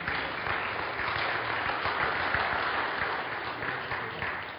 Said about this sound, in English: And the crowd cheers.